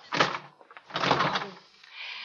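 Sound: door swinging shut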